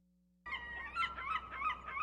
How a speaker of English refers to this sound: Seagulls for summer.